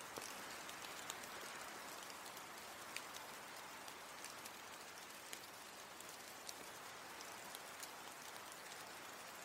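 rain falling

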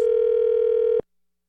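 telephone dial tone

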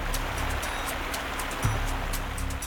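fast-flowing river water

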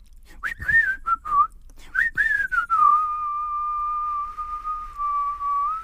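person whistling

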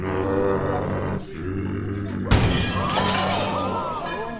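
window glass shattering

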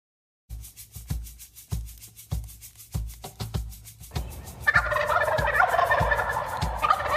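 wild turkey gobbling

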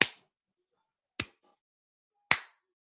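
slow hand clapping

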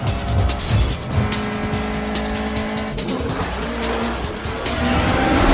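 race cars speeding by

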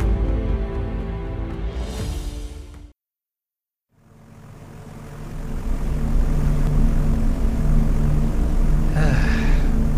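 airplane engine drone

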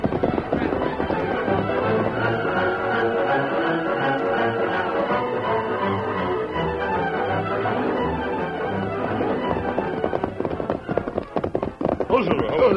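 horses riding off

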